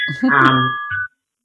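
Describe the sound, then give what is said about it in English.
A phone rings briefly, a steady electronic tone lasting about a second before cutting off abruptly, with a voice murmuring or sighing underneath it. “Don't you love it when the phone stops?”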